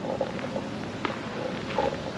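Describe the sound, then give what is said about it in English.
A car engine revs hard outside as someone races: a steady, rumbling engine roar with brief higher whining tones rising through it; moderately loud throughout, with no talking. “Wow, sounds like somebody's racing.”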